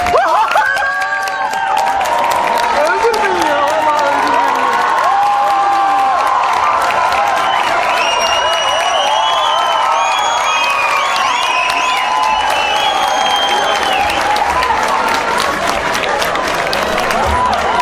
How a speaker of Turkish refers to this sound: Ben ismini söylemeyeyim, gelince görün. Söyleriz abi. Ama bir alkışla gelirse güzel olur.